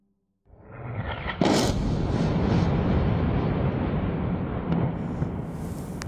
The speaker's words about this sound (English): 20th October, 1:30 a.m. We woke up on these sounds of explosions and strong airstrikes. Very violent. Everyone woke up on the sound.